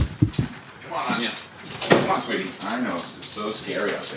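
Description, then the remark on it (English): A door opens to let a dog in during a storm, with a few sharp clicks and a louder clattering thump partway through, while muffled voices and rustling continue in the background. “I just need to need to let my dog in real quick.”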